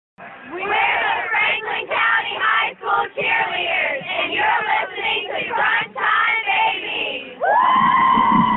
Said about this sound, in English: Love to hear the cheerleaders calling out Crunch Time. Appreciate that.